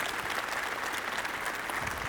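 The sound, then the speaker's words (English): An audience claps together to thank God for his grace, a dense, steady wash of applause, many hands at once filling the space evenly from start to finish, with no voices standing out. “Clap your hands and thank God for his grace.”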